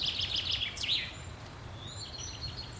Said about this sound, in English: So I'm descending another hollow way from the top of the Derry through the most gorgeous woods. And there are these deep channels, which are clearly old cart tracks or something. Lots of bird life here.